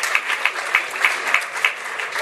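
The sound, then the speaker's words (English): Applause from an audience, a dense crackle of claps with a steady, even beat pulsing roughly three times a second, moderately loud and with no voices over it. “Somebody should have clapped.”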